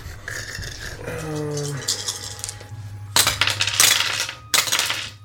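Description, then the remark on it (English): Dice clatter and rattle across a hard tabletop in two quick, crisp bursts, rolled for a character taking a shot during a tabletop game, after a quieter stretch with a low background hum and a faint voice. “We're going to have him take a shot at you. I'll need more dice.”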